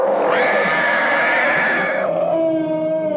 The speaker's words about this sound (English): So the Wampa was an elephant they recorded at the Oakland Zoo mixed with another sea lion. It sounds like they were tight with the zoo and they would go down and record animals all the time.